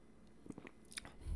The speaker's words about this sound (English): Let me take a sip here.